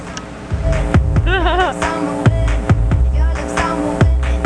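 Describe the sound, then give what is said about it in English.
A steady, droning electrical hum, heard in place of a song that failed to come through, fills the whole stretch, broken by dull thumps every half second or so and a brief warbling tone partway through; no music comes through. “All I hear is hum.”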